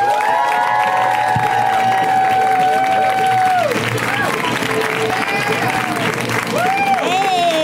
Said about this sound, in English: So you guys, extra crazy round of applause for this amazing comic slash responsible dog. Sitter!